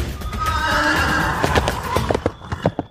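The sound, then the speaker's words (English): A mule lets out a long, wavering whinny with bright harmonic bands, followed by a quick run of sharp hoof clops that patter irregularly as it moves off. “I almost forgot I ride a mule.”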